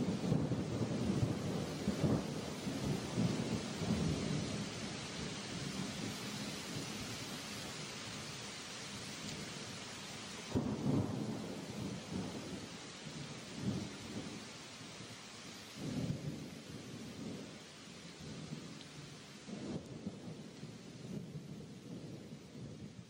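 A steady roar of heavy rain fills the scene while deep thunder rumbles roll through, swelling loudly near the middle and again later before fading back into the downpour.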